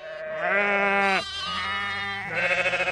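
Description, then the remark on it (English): Sheep and lambs of Tom Milburn's flock bleat in overlapping calls on his farm near the Church of St. Giles Chollerton on a Sunday morning as he feeds them: a loud wavering bleat followed by higher-pitched lamb cries, ending in a trembling, quavering bleat. “His lambs are healthy and active.”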